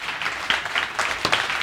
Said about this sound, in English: So you gave a round of applause for that. That's pretty cool.